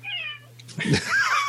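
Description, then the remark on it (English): A male cat meows twice in quick succession, the first a drawn-out, wavering cry and the second a louder, more strained yowl, with a low steady hum underneath. “Don't worry about that cat one bit.”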